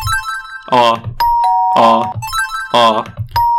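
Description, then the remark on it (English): A doorbell chime rings three times in a steady, repeating rhythm, loud, with a voice sounding between the chimes. “The doorbell means you... good.”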